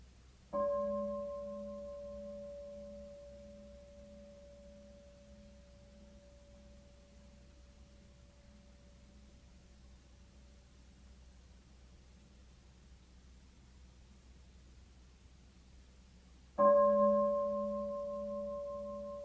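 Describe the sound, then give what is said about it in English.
A meditation bell is struck and its clear, mid-pitched tone hangs and slowly fades over many seconds before a second strike rings out and begins its own long decay. No one speaks. “Notice the difference between the arising of the concept bell in the mind and the simple hearing of the sound.”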